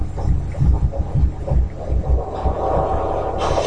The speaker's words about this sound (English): Like, remember, you hear that sound effect? Yeah. Wouldn't that be like the heartbeat of the people he's watching? Yeah. Why are they playing it now? Ain't nobody down there with a heartbeat.